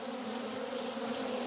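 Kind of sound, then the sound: insect, bees buzzing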